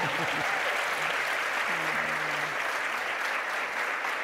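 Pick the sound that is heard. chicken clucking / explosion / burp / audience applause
audience applause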